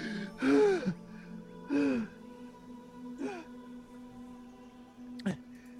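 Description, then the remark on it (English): A person hunched over with hands on knees breathes heavily and audibly, with four loud, breathy gasps spaced unevenly over a few seconds, the first two strongest and the later ones shorter. “I'm like hunched over with my hands on my knees, like breathing heavy.”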